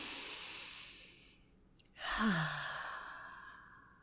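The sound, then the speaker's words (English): A single deep, drawn-out, contented breath in, ending in a soft voiced sigh that slides downward in pitch, made by a person as a noise to sum up their obsession with trees. No one talks, and there is faint airy hiss before it. “Breathing in all that oxygen that they're creating.”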